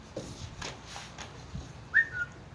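A single short, bright bird-like whistle chirps once, sliding up and then trailing down, standing out clearly against a quiet, faintly noisy background.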